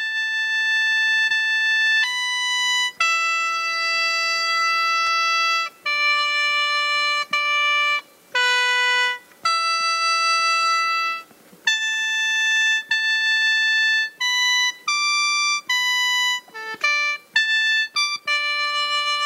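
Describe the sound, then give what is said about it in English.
A sheng plays a slow melody of held, reedy chords with bright buzzing overtones. Notes change every second or two with short breaks between them, loud and steady, with no voices. “At the age of 5, I had my first sheng, which was handmade by my grandpa.”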